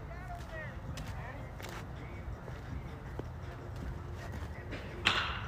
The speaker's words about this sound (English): Somebody is in this, like, big shed just hitting dingers, man. Listen to this.